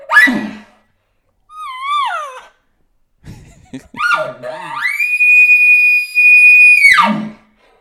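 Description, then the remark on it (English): A person imitates elk calls, a bull bark, a cow estrus call, then a roundup bugle: a short harsh bark, then a wavering mid-pitched whine, then a low grunt rising into a long, loud, high whistling bugle that holds steady before dropping off. “I messed that roundup bugle up pretty bad right there.”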